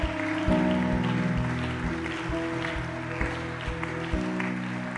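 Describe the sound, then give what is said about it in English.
A crowd claps steadily for people coming forward, a dense, continuous patter of many hands, blended with sustained musical chords that shift every second or so underneath. “Just keep clapping for them.”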